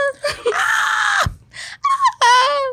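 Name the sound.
voice imitating a scream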